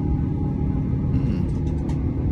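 Airliner engines roar with a steady, deep rumble and no clear change in power during a tail strike. Faint, brief scraping hiss flickers over the drone partway through. No one speaks.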